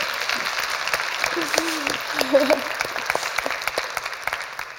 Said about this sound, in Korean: 촛불이 타오르기 전에 이 말을 하면 다들 고개 절레절레 흔드셨어요. 근데 촛불 이후 지금 이 말을 하니 박수가 나오네요.